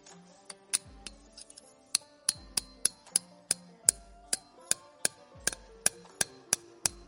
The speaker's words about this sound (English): Put your spile in, just until it's set. The hammer will bounce off when you're deep enough.